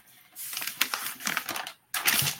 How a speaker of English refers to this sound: Well, Nick's turning pages here, so let's go ahead and hear your stats there, Nick.